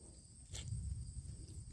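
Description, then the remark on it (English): Faint, steady insect chirping from crickets or cicadas outdoors, a continuous high buzz with a low rumble underneath and one brief soft knock near the start. “Oh, like the crickets chirping. I thought they were cicadas.”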